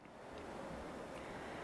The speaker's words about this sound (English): We met with Auntie Ku'ule and Monica at Kīholo last November, looking out over the black sands and listening to the ocean waves as they shared the story of this place.